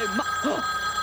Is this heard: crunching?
no